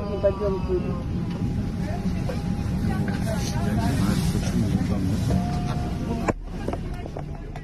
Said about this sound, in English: Soon after leaving his seat, he collapsed onto the floor of the plane. Oh, on a video recorded by one of the other passengers. You can hear him moaning in pain.